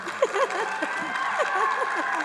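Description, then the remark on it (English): A crowd claps steadily throughout, a dense wash of overlapping hand claps mixed with scattered whoops and shouts from the audience, applauding to get the speaker's husband up on stage. “Hopefully we can get him up here if you all applause enough.”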